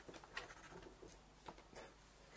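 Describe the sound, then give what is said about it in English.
Faint, scratchy rubbing in a few short, uneven strokes of a rubber being scrubbed back and forth over paper to erase pencil marks, quiet, with no voices. “There's a rubber there. Because you just got. Or just the rubber.”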